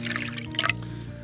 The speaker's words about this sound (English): Pull up a chair, have a seat, I'll pour you a drink, and let's get started.